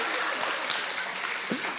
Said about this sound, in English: Oh, man, praise God. That's one of the best hand claps we've got in here, right?